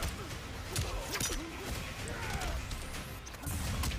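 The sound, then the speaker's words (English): Booming video game explosions with crashing bursts and heavy low rumble, several impacts over a few seconds amid busy game noise, during a Terminator versus Rambo match, from a character's recovery move that is an explosion. “Ooh, he's got like the pocket sand recovery, except it's an explosion.”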